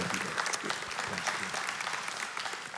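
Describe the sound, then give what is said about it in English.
A church audience breaks into steady, dense applause of encouragement for their pastor, called forward to be prayed for, many hands clapping at once in a continuous crackle that holds at an even, moderate level for a few seconds. “And can we give him a word of encouraging applause?”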